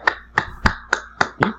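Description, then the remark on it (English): Six soft, evenly paced hand claps by one person, a slow golf clap, each a short dry smack, with no talking over them. “That was me clapping. Oh. Golf clap.”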